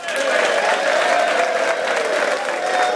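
Steady audience applause fills the whole stretch, a dense, even wash of clapping hands at a loud, constant level with a faint murmur of crowd voices mixed in.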